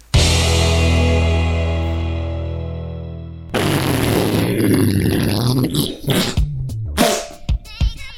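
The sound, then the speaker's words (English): A long, buzzy fart sound with a low, steady pitch slowly fades, then gives way to a louder, rough, sputtering burst of noisy blasts and pops that breaks off in choppy bits. “And what better way to end a season than with a fart joke?”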